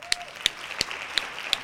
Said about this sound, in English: Hand claps on that.